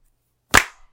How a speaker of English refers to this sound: You clap, so that's... I heard one clap.